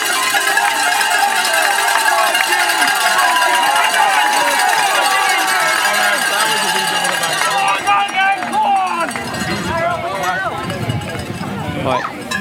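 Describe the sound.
A crowd of spectators at the UK National Hill Climb Championships rings cowbells in a loud, continuous metallic clatter, with cheering and shouting voices mixed in; the clanging thins toward the end as the yelling becomes more prominent.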